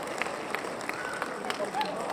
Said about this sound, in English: That's a long cheer. We're still clapping.